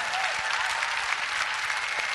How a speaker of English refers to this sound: Somebody give the Lord a clap offering.